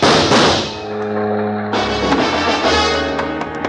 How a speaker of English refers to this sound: They stood face to face, not more than a foot apart, and talked in voices that couldn't get to me through the racket of the foghorns in the harbor. What spoke loud enough for me to hear was a gun.